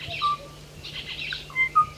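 Clear, flute-like whistled notes from a single songbird, spaced in short phrases over a faint hiss: the mating song of a male Kauai ʻōʻō, a small black bird native to Hawaii, recorded in the 1970s, carrying steadily with no voices present.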